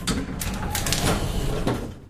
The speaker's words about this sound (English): The elevator door slid open.